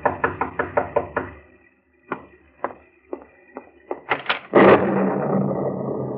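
Sharp knocking on a door on a dark, stormy night, a quick run of about six raps, a pause, then slower scattered knocks, ending in a sustained rushing noise. No one speaks.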